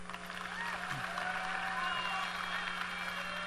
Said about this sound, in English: Give him a hand clap.